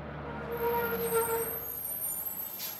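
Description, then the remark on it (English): An empty heavy bus rumbles and slows to a stop with a faint brake squeal, then a sharp hiss of air brakes bursts out at the end. No one speaks. “Finally, an empty bus stopped for them.”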